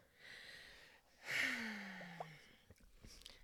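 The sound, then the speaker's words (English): A sudden burst of fizzing hiss from a kumquat-flavored Martian soda, fading into soft crackling bubbles, fairly quiet, with no talking. “Listen to the bubble.”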